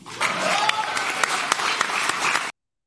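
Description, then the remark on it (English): A crowd of Chicago Cubs season ticket holders cheers and whoops over steady applause, a dense wash of clapping with high shouts rising above it, continuous and loud for about two and a half seconds before cutting off abruptly. “Yeah, that whooping and cheering are the season ticket holders.”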